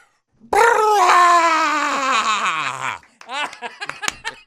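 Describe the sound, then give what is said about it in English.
A voice lets out a rebel yell, a loud, wavering whoop held for over two seconds and sliding steadily down in pitch, followed by a short run of choppy laughter. “The rebel yell.”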